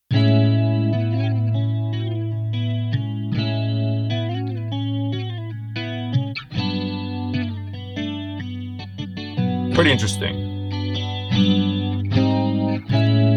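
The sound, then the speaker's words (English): An electric guitar track, duplicated with modulation and saturation effects put on the copy, plays a steady run of sustained notes, thickened by a wobbling chorus-like modulation and gritty saturation, with a sharp flurry of attacks midway. A voice briefly speaks over it. “I took the duplicated one and put some modulation and saturation effects on it.”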